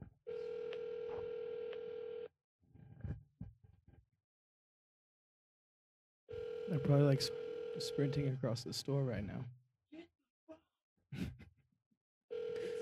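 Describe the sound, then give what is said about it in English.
A telephone ringback tone from a call to a Walmart store purrs in steady bursts with silent gaps between, heard through a phone line, while a person talks briefly in the pauses and over one ring. “The phone is ringing.”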